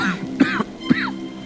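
A man coughs close up, two rough, throaty bursts about half a second apart with a low, gravelly hack between them, no speech around it.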